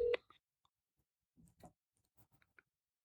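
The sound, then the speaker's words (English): A phone dialing out to call a number back: a brief electronic beep at the start, followed by a scattering of soft, irregular clicks and taps, otherwise quiet, with no one talking. “Call back one more time.”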